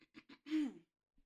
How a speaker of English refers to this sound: Hold on, you guys, let me clear my throat.